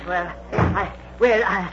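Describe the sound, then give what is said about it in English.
A door swings shut with a short, solid thud while voices carry on around it. “I'll turn out the light, Mr. Witherall, and close the door.”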